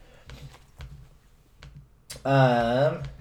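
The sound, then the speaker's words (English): Several sharp computer keyboard clicks tap out irregularly over a low background hum, then a loud, sustained voice takes over near the end. “been banned from using his keyboard when we record because he's such a loud clicker”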